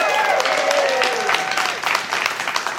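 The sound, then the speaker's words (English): A small group in the room claps and cheers to greet the Neverville, North End and Bronx Park campuses joining live, with dense, steady applause and a few high voiced whoops gliding over it in the first second, holding at a fairly even level throughout. “And so let's those few people in the room give the campuses a cheer.”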